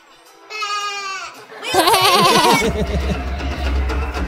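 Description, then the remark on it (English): Voices imitate a low bleating animal call, sort of like a sheep: first a thin wavering bleat, then a louder, lower, quavering bleat joined by a second voice, fairly loud, ending in rough murmuring. “And it said a low, bleating sound, sort of like a sheep.”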